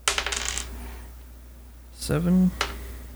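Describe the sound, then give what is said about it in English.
Polyhedral dice, a d12, a d10 and a d6, clatter and rattle across a tabletop in a quick burst of clicks as damage is rolled for a missile attack, then a second shorter tumble lands about two seconds later, with a brief voice sounding alongside it. “Yeah, you roll a d12, you roll your d10, and you roll your d6 for each missile attack.”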